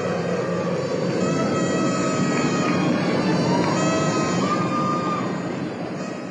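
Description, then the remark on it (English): A steady, dense roar of Space Shuttle Challenger's rocket engines just after liftoff on the 25th Space Shuttle mission, as it clears the tower and heads downrange, loud and unbroken throughout with a rumbling low end, easing slightly at the very end. “Liftoff of the 25th Space Shuttle mission, and it has cleared the tower. Control program confirmed. Challenger now heading downrange.”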